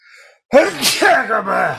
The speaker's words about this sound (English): Oh, I got a Miami sneeze there hanging on from the last place. Hang on.